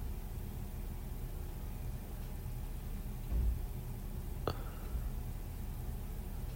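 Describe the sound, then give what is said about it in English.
A low, steady engine rumble from a garbage truck idling somewhere outside, muffled, with a brief clank partway through and no voices. “Yeah, that's the garbage truck.”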